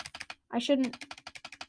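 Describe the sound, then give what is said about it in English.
Rapid, steady clicking of keys on a computer keyboard, fairly crisp, with a short burst of a voice speaking partway through before the typing carries on. “sorry, that's my keyboard.”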